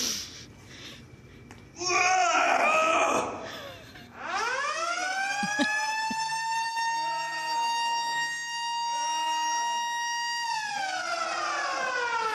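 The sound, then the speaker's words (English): A Planet Fitness lunk alarm siren wails loudly, sweeping up to a steady, piercing tone with a buzzy edge, holding for several seconds before beginning to drop, after a few seconds of chattering voices. “So yeah, they have that little alarm that goes off”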